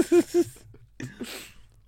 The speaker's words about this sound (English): He sneezes like that a lot.